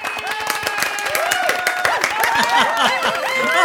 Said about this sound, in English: Thank you. Oh, you're too kind. Ladies and gentlemen, a big round of applause for the impressionistic stylings